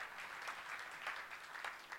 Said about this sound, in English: Can we give these guys a massive round of applause? Because they could be up here all night. Thank you, guys.